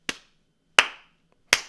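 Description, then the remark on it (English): Three sharp hand claps spaced evenly apart, recorded with a handheld microphone in a completely untreated room, each followed by a short echoing tail. No voices, just the claps ringing out. “I forgot how to clap. First one, I missed my other hand.”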